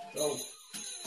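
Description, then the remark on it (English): A bright back doorbell chime, rung relentlessly by a puppy, rings with sustained, shimmering high tones over the whole moment, while a man speaks a single short word over it. “The puppy is relentlessly ringing the back doorbell.”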